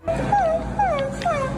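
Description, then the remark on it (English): A woman acting like a puppy whimpers and howls in three high, sliding whines that each fall in pitch, following one another steadily over a constant low rumble, with no talking. “She acts like a little puppy but dog.”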